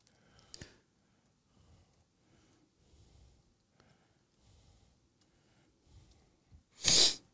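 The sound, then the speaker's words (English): A single loud, sharp sniff near the end, a quick forceful snort of air following several seconds of quiet with faint rustling and a brief click early on. “Don't sniff at the same time.”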